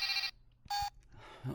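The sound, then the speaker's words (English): A telephone rings at 3 o'clock in the morning in two loud, bright bursts separated by a short pause, the electronic trill clear with no voices over it. “One phone call. That's all it takes to change your life forever.”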